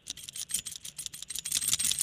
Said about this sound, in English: That's just the sound of your keys jingling.